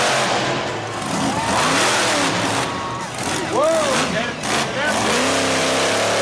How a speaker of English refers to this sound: Vroom, vroom. Sounds from the Monster Truck Show at the Nevada County Fair, maybe the best fair in all of California.